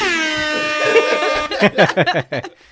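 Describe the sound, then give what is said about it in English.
A loud, sustained air horn blast rings out for about a second and a half, then cuts off as a burst of choppy laughter follows. “Where the fuck is his air horn?”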